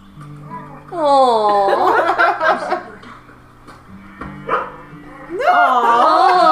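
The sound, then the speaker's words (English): A dog barks and yips in two loud, high-pitched bursts, one near the start and another at the end, with a quieter stretch between. “Do not be throwing things at my dog.”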